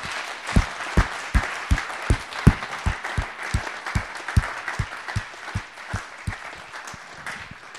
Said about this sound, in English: Can we, first off, just give them a real round of applause and honour them in that way?